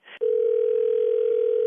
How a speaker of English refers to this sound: I'm going to dial the phone for you, okay?